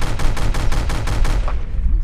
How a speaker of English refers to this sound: Okay, so the bullets are all over the place. And you can hear them tinking off the car because some of them get really, really close to hitting you.